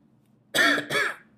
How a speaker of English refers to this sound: I'm not going to edit all these coughs out. I'm just wondering. I got coffee to help with all the coughing.